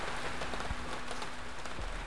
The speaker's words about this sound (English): Another drop followed, then another. And by the time I shakily lifted my head, the sky had erupted into a full-on downpour.